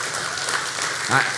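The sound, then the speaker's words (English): An audience claps in a dense, steady patter of many hands that holds at an even level for over a second, with a brief voice cutting through near the end. “We can clap for that.”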